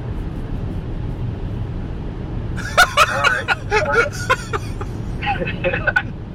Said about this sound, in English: Are you recording or are you just in the cab? No, this is recording, dude. In a cab? In the cab. Why are you recording? It sounds like you're in a cab. I'm driving a car.